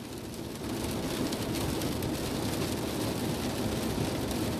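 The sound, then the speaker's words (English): Steady rain pours down outside, a dense, continuous hiss of drops that stays even and fairly loud throughout, with no talking. “You know, so I know you guys hear the rain.”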